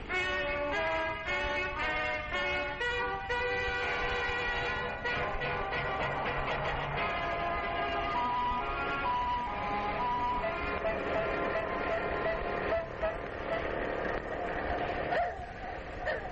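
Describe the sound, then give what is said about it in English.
Busy street traffic in the industrial district of Paris with a car driving along as horns honk repeatedly, their blaring tones overlapping and shifting over a steady engine rumble, loud throughout. “Where are you taking us in this car”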